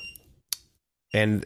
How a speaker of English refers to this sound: there's this little, like, lock on the door, and he's trying to get in. Is that what that beeping sound is? That's what the beeping is.